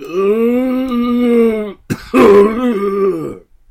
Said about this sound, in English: Oh, jeez. Sound like you got a bad cough there too, mummy.